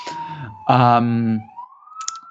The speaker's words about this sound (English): Probably you can already hear in the background the sirens coming for them. It's a little New York-style interruption.